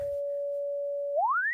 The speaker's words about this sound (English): You want to hear the filter self oscillating? Sure. Let's see. I'll turn input down on the mixer before I plug this in because it's going to be a little screechy, possibly. Oh, there we go. Nice sine wave.